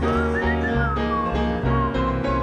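Someone whistles a short, sliding tune over a full instrumental backing with steady bass notes, the whistle clear and prominent through the whole stretch.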